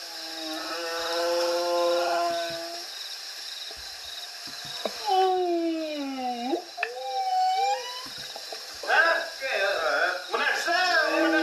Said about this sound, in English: Guys, don't worry, it's just my whale songs. Just my whale songs. Helps me sleep.